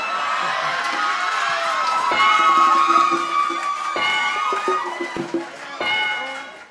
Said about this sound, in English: Judging by the crowd reaction, they like that shit.